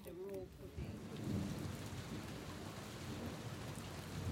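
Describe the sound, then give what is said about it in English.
Steady, heavy rain hisses throughout on a stormy night while deep thunder rumbles low underneath, a continuous storm wash with no clear breaks and no one speaking. “It had been a stormy night with a full moon”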